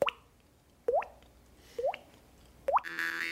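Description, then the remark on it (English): A mouth-made water drip: someone shapes the mouth into a cup and taps a cheek, producing four hollow, rising plops spaced about a second apart, clear, with a faint hiss at the end. “So you're making your mouth into a cup. You just tap on your cheek.”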